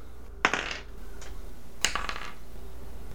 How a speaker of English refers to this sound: So how about we roll it up this time? Everyone, roll one of the 10-sided dice.